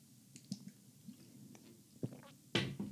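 Quiet mouth sounds of someone sipping water: a few soft wet slurps and swallows, ending with a louder gulp near the end, with no talking.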